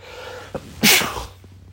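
A single loud sneeze from a person bursts out after a brief sharp inhale, with a bright hissy spray that fades quickly into quiet background noise.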